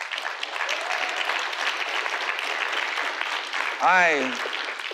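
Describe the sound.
An audience applauds the speaker's father steadily throughout, a dense wash of clapping, and a single voice lets out a short, rising-and-falling whoop near the end.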